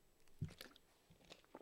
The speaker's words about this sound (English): That was a gulp.